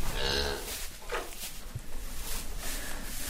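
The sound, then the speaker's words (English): A dairy cow lets out one short, full-throated moo right at the start, then only steady rustling and shuffling noise fills the echoey shed. No one speaks. “we've got maybe a dairy cow in to raise the other twin”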